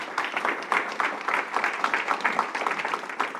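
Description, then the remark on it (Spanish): An audience breaks into sustained applause for the Lord, many hands clapping in a dense, steady wash of sharp claps that holds at an even level throughout, with faint voices mixed in. “Ahora, denle un aplauso al Señor.”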